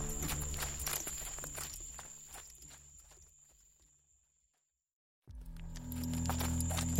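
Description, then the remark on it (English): Horse hooves clip-clop in a steady walking rhythm, gradually fading away, then near silence before a low, rumbling background sound swells in. No one speaks. “The horse and I had traveled for days, and everywhere we went there were corpses.”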